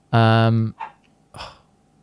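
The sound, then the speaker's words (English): A dog in a house barks loudly, one long drawn-out bark followed by two shorter, quieter yelps, with no one talking. “Apparently I'm the only person in this house that looks after the dog.”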